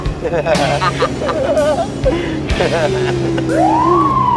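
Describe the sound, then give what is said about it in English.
An emergency vehicle siren wails and warbles in rising and falling sweeps, ending on a long upward whoop, loud amid a busy mix of voices and street noise. “Did you turn the siren on?”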